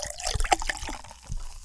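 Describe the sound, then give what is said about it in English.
Fizzing XZ Cola in a bottle opened eight weeks earlier, a fine continuous hiss of bubbles with small irregular pops and a few brief watery splashes, moderately loud, with no one speaking. “That fizz?”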